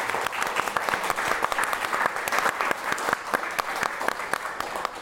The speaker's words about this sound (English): Can I please get a round of applause for our moderator, Martin?